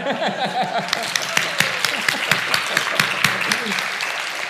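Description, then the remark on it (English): An audience at a Unitarian Universalist Promise and Practice Sunday service applauds its welcomed guests steadily, a dense patter of many hands clapping with sharper individual claps poking through, while voices murmur underneath throughout. “I think they want to applaud you, and I'm going to let them.”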